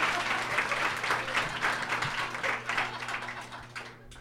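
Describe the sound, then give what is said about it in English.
A crowd applauds for Leonard Maltin, dense overlapping claps forming a continuous crackling wash that holds fairly loud for a few seconds before tapering off at the end. “Let's hear it for Leonard Maltin, everybody.”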